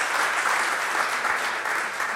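A room full of people applauds steadily, dense overlapping claps forming a continuous, fairly loud wash of sound with no voices over it.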